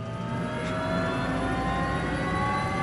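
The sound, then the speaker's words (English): The first of a helicopter's two turbine engines starts up: a steady loud roar layered with a high whining tone that holds constant as it settles to its idle speed. No one speaks. “So this is my first engine starting. It's just getting up to its idle speed now.”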